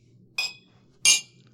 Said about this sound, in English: as you can tell by the clinking, we are all together.